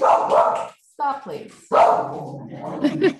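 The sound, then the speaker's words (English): A Welsh corgi named Willow barks in a few sharp, quick bursts separated by short pauses, with a person's voice mixed in around the barks. “She is a Welsh corgi.”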